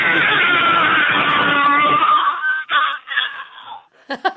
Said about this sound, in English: if you wouldn't mind giving us your best primal scream, if you can just move the phone a little away from your mouth, but then go for it.